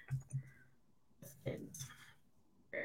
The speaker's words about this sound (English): Let me type it. Bear with us today. I'm just typing out my questions of sexual energy.